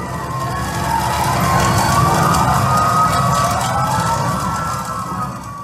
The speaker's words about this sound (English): When she woke up, she spoke a bit and then she coughed and there were some sirens in the background. It just sort of escalated from that moment. The sirens got louder, the sounds of the fire started to increase.